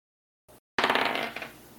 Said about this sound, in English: Okay, go ahead and roll your dice.